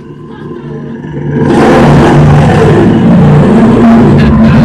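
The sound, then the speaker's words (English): An angry bear's roar sound effect, the 'angry West Hollywood bear' cue on the show Kill Tony: a low rumbling growl swells into a loud, harsh, sustained roar that holds for about three seconds without letting up. “You better wrap it up then, or else you're going to bring out the angry West Hollywood bear.”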